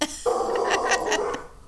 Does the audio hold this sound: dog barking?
yes